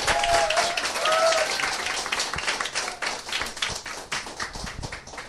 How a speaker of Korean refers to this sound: 네, 박수로 맞이해 주세요. 네, 어서 오세요.